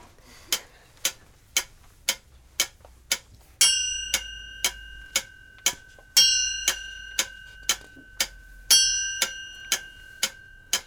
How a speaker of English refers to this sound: Twelve chimes, it's midnight. At midnight, anything can happen.